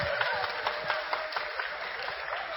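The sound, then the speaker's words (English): A crowd claps steadily for a couple of seconds, a dense wash of overlapping hand claps with a few sharper slaps standing out, fairly even in loudness throughout. “Yeah, when you guys are clapping, that's on social media, not now.”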